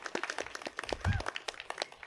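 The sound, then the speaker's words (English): A round of applause from a panel audience, many hands clapping in a dense, irregular patter that holds steady at a moderate level for about two seconds. “And can we have a round of applause for these guys?”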